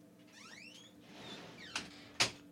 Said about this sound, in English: We just let him out. Door opening and closing noise.